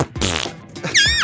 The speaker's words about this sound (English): Don't be laughing at my farts, right? Yeah. Don't you be. Don't think that that's a break in the hostility. Yeah. Keep your laughs to yourself, right? These are my farts. I'll tell you when you can laugh at them.